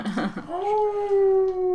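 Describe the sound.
A person gives a howl of victory imitating a wolf: a single sustained, rising-then-level vocal tone held for over a second, loud, after a brief burst of voice.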